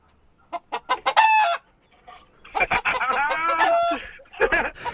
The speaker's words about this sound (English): It's a cockerel, yes, absolutely right, yes. Or a hen. Chicken, yeah.